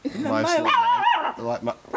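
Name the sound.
small dog barking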